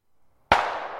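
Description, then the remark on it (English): After a moment of near silence, a single loud gunshot cracks out sharply, its bright bang trailing off into a ringing decay that lingers to the end. “Now the sound of gunshots made them jump.”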